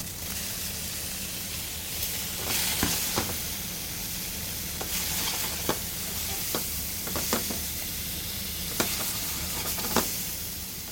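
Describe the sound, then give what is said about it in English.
Steak sizzling steadily in a hot pan, a continuous bright crackling hiss with scattered sharp pops and spits throughout, no voices. “Meanwhile, while that going, I'm gonna start cooking the steak. So nice hot pan.”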